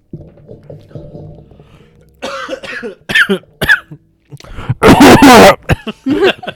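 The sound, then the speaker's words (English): A loud cough bursts right into the microphone, followed by a few shorter throat-clearing coughs, with faint low rumbling and murmured voices in the background beforehand. “It's so loud. Every time anyone coughs into the mic.”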